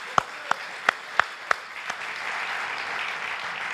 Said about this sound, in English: Would you give him an applause again?